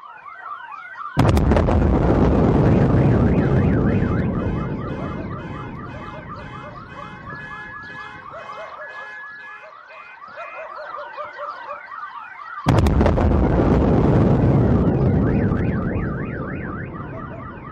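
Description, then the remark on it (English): Two loud, deep skyquake booms about eleven seconds apart, each rumbling and fading slowly, with several warbling car alarms blaring continuously through and between them. No voices. “but it will be very obvious when the skyquake happens, mm-hmm. and it is extremely loud.”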